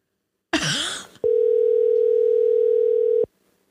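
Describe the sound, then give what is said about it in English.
A short burst of noisy static gives way to the ringing tone of an outgoing phone call that goes unanswered: one loud, steady electronic ring lasting about two seconds, then silence. No one speaks. “Is it ringing? It's ringing.”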